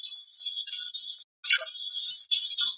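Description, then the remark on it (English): A high-pitched electronic temperature gauge alarm beeps in irregular, stuttering bursts, almost like Morse code, with a brief pause midway; clear, with no talking. “You'll hear the temperature gauge going off. Sounds like Morse code again.”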